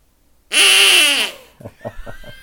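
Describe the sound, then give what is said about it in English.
A hand-me-down duck whistle with a neck strap is blown: one long, loud, raspy quack that drops in pitch, followed by a quick run of four shorter, softer quacks. No one speaks. “it's because I've blown on this hand-me-down duck whistle, but we'll give it a try here, I guess.”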